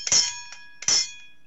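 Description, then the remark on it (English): An old bell with its pull chain clangs twice, each sharp strike followed by a bright, shimmering ring that lingers, with a faint rattle of handling between the two rings. “this is an old bell off a ring with the pull chain and everything.”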